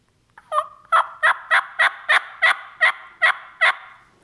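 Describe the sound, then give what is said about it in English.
A hunter imitates a hen turkey, calling a loud series of about ten yelps at turkeys, evenly spaced in a steady rhythm with a slight rasp, each note sharp and clear against a quiet background with no talking. “So you read the birds, you look at them, and what I'll do right away is yelp at them, just like a hen.”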